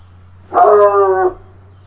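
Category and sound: animal, dog barking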